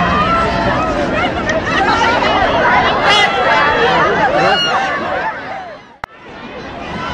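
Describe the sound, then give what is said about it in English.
A dense crowd chatters continuously, with many overlapping voices forming a loud, steady hubbub, occasional laughter and shouts, and a brief sharp click near the end. The President walks around the barricades, greeting the crowd and touching hands after a Chamber of Commerce breakfast. “Now the President makes his way to greet some more of the crowd, walking around the barricades, touching the hands of those around the barricade.”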